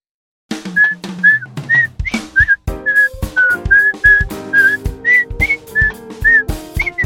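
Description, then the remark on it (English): Someone whistles a sly, sneaking spy-style melody in short separate notes, over a plucked, stepping bass line with sharp percussive hits, and no one talks. “Because last episode, I asked you if I would be cooler if I was a spy, and then here you are, whistling spy music.”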